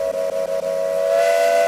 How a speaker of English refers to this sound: ooh, lucky train, lucky train, lucky train alert. Choo-choo.